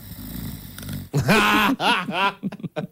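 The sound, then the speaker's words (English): Someone fakes a snore: a low, rattling snort gives way to exaggerated, drawn-out voiced groans and wheezes, ending in a few short puffs. “I just wanted to note, you just snored about the doctrine of God.”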